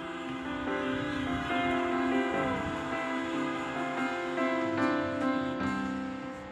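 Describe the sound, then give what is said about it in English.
Many car horns blare together in a long, sustained chorus, honked to give glory to God, overlapping steady tones that hold loudly for several seconds with no voices present. “Come on, if you want to give glory to God right now, go ahead and give a honk.”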